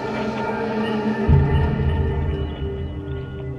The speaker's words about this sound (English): And what's that humming noise?